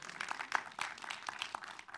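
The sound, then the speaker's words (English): An audience claps in a steady, dense patter of many hands, fairly soft and unbroken for about two seconds, with a few sharper claps standing out. Nobody speaks over it. “And, yeah, it's okay to clap.”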